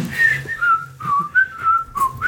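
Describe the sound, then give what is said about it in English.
Someone whistles a short, lilting tune of sustained notes that drift up and down in a mid-high pitch, with soft footstep-like thumps and rustling underneath. “And then we cut back to you guys who are happily walking along and whistling to yourselves.”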